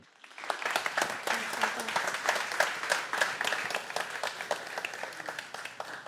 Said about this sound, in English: Big round of applause, please, for Rose.